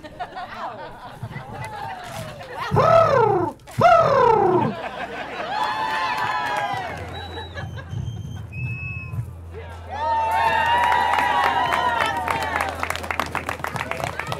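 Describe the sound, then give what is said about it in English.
At a bird-calling contest, a voice imitates a golden-crowned sparrow call, known for its distinct three-note trill, with a series of high, warbling whistled notes, sweeping up and down and holding steady pitches, over a crowd's murmur and a low hum. “That was a golden crown sparrow, known for its distinct 3-note trill.”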